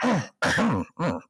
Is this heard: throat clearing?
yes